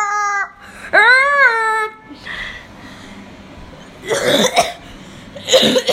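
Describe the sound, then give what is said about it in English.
Two harsh, noisy bursts like coughs from someone who has been coughing for about three weeks ring out about two seconds apart, following a high, wavering vocal sound at the start. “I've been coughing for like 3 weeks already.”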